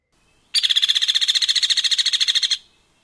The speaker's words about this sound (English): Now, let's play all three woodpeckers' rattling calls back to back. First, Downy. Then, Harry.